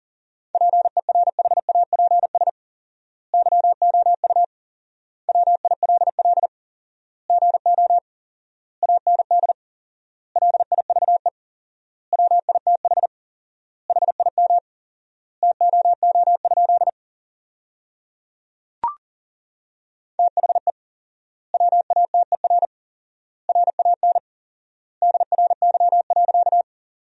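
Rapid Morse code at 40 words per minute with four-times word spacing, sending sentences built from the top 500 words: a single steady mid-pitched beep keyed in quick dots and dashes, with long pauses between words and one brief click partway through.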